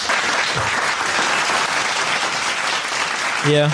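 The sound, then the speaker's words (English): Steady, dense applause from a crowd fills the whole stretch, loud and continuous, with a voice briefly cutting in near the end. “Yeah, not playing. The clapping.”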